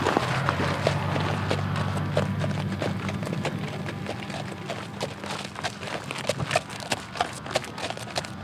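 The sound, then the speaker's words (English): Hooves clop along steadily, a horse walking at a prison farm with a brisk, uneven rhythm of sharp knocks over a low rumbling background, with no talking. “As you've seen, we have a lot of horses here.”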